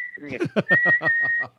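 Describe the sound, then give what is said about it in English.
A steady high-pitched whistle, imitated by a voice, runs continuously over someone's rapid talking, like a faulty hearing aid squealing through the conversation. “Like, she has a hearing aid that she found in the garbage, and she won't get it fixed. So it whistles all the time.”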